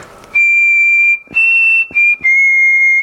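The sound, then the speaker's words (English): A person whistles into a computer microphone, holding a steady high pure tone in four sustained bursts separated by short breath gaps, loud and clear with no talking. “So if I whistle into my computer, for example, it will show the nice wave of my beautiful whistle.”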